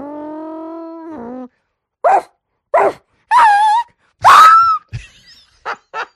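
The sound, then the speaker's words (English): A person vocally imitates a dog getting hit by a car: a long, steady whine, then a run of six sharp, high-pitched yelps, loud, with short gaps between them. “And then the other one was I worked up this impression of a dog getting hit by a car.”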